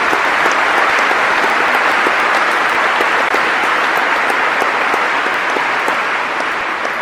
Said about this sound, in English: Yes, please. That is for you. All applause for you.